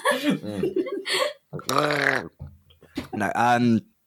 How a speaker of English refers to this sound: Sorry, I was mid-drink. Does he choke on water? Voice is hurting. I was like, gargling then.